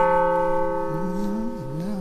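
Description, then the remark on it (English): A single carillon bell, played to demonstrate its different timbres and tones, rings out with a long, steady, shimmering tone full of overtones, while a lower wavering hum slides up and down beneath it for the second half. “It was just André demonstrating all of the different timbres and tones that you can get out of just one bell.”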